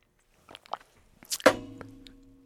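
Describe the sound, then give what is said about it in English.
A few soft, brief sips of water from a mug, then a breathy swallow and a sharp clunk as the mug is set down, leaving a short ringing tone. Quiet, with no talking. “Hold on, let me sip my water, guys.”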